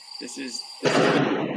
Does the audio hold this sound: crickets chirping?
yes